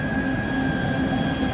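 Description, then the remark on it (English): A train loaded with tanks and armored vehicles rumbles past at high speed, leaving Crimea, in official Russian defense ministry video; a steady loud roar of wheels on rails with a sustained high metallic whine running through it, no voices. “You're hearing sound from official video from Russia's defense ministry showing a train loaded with tanks and armored vehicles leaving Crimea at high speed.”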